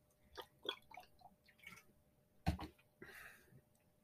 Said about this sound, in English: Maybe I'd take a sip of water, that'll help.